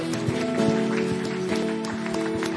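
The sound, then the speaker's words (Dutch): An audience claps for Jesus, a dense crackling applause that holds at an even level throughout, with a sustained keyboard chord ringing underneath. “Come on, let's give Jesus one hand.”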